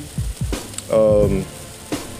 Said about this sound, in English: But it just started hailing. I don't want there to be no interference with the, you know, like quality, or, you know what I'm saying, like hearing the hail in the back, stuff like that.